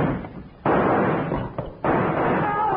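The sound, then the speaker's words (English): Two sudden, loud gunshots crack out about a second apart, each followed by a dense wash of noisy rumble that carries on without any talking; the gun is fired by yanking a rawhide cord looped around its trigger. “He fired at the furnace line. He knocked my guns right out of my hand.”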